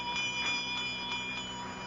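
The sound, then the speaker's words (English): A small bell rings faintly and steadily, its thin metallic tone hanging in the air with a few soft repeated strikes, alone with no voices. “It's been ringing ever since you went up with Sheila”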